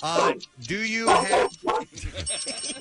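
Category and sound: animal, dog barking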